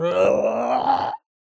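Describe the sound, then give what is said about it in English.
A person imitates the loud groan of a large, white-skinned toad with huge tusks emerging from mud: one sustained, throaty, rumbling cry lasting just over a second, steady in pitch before rising slightly and cutting off abruptly. “And this large, kind of white-skinned toad with huge tusks emerges directly in front of you. And it lets out a loud...”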